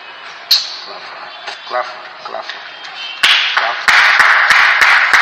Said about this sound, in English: Clap.